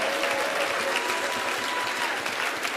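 An audience claps hands to thank the Lord, a dense, steady burst of applause, many overlapping claps blending into a continuous crackle at an even, fairly loud level with no voices standing out.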